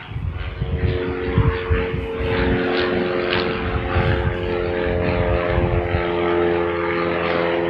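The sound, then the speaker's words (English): A propeller airplane drones loudly overhead, its steady engine hum and harmonic whine filling the air for several seconds with no voices present. “He'll wait for the plane to pass over.”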